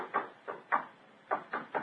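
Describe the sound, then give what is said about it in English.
Someone raps on a solid bedroom wall while examining the room for trap doors or sliding panels, six dull knocks, grouped in two sets of three with a short pause between them; no one speaks. “It sounds solid enough, Holmes.”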